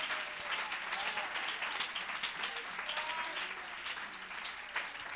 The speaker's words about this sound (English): Somebody praise him if you believe in the transformative power of God. Hallelujah. Somebody clap your hands to Jesus.